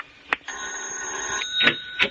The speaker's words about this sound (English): Then I heard the bell. My first thought was it was Ira. Automatically, I got up and walked downstairs to answer it.